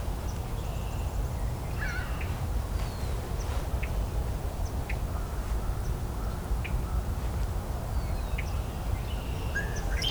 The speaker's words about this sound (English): Ringbill gull.